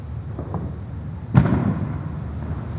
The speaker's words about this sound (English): Oh, baby, I felt that one rattle the walls. Did you know that some over-the-counter fireworks have the blast capacity of 1/2 a stick of dynamite?